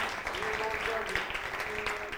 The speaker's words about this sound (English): give her a hand clap, because she does a lot of work for me.